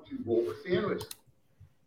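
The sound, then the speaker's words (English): Two quick, sharp computer clicks snap out as someone clicks on some stuff, just as a stretch of muffled voice trails off, followed by quiet low background noise. “clicking on some stuff over there, making some noise.”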